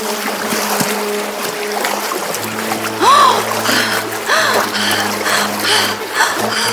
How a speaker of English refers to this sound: jumped back to their boat and rowed as fast as they could, but Eva was so stubborn that she jumped into the water